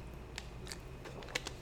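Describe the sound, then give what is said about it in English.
A quiet sip from a drink: a few soft wet mouth clicks and a faint swallow in a brief run of small taps, with no talking. “Before I tell you this guy, I'm going to take a sip here.”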